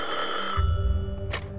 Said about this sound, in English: But shortly after noon on April 22nd, Sheriff Potts' phone rang.